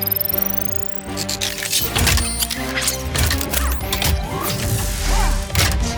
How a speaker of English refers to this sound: The super giant drill truck, then. Initiating super giant drill transformation.